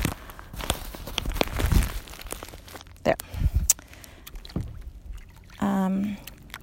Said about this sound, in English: Can you still hear me in there? And you're like sinking slower, lower and lower into my life jacket. Hang on, rustling about to happen while I readjust you.